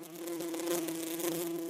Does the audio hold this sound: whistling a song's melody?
no